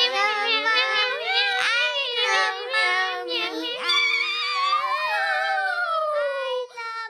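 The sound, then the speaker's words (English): Voices imitate cat meows in a sustained, sing-song chorus to sing out the end of a show, with high, wavering tones that slide up and down over several seconds, overlapping and continuous without pause. “You all want to sing us out? Meow. Meow, meow, meow, meow.”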